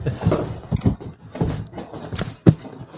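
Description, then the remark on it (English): A dog barks repeatedly during an interview recording, a run of short, gruff woofs in an irregular rhythm, ending with one sharper, louder bark. “He honestly never barks, except for obviously when I'm recording an interview.”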